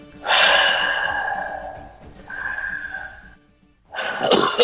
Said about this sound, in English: He is retching. He breathes heavily to contain himself.